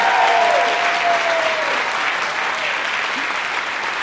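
A steady burst of audience applause during a performance, dense clapping from a crowd at a constant loud level, with a faint voice or whistle-like tone briefly riding over it.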